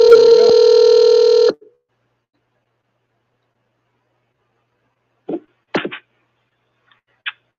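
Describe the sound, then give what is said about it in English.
A single loud ringback tone on an outgoing phone call to a person with a question, a steady electronic buzz lasting about a second and a half, followed by silence and a few faint clicks on the line. “Let's make the call.”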